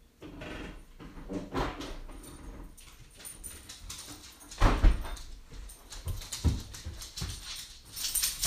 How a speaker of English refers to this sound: Oh man, I think dog is done shitting. I'm gonna let dog in. Be right back.